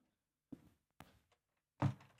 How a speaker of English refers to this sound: Someone shut that door. It's banging, isn't it? Go on, I'll do it.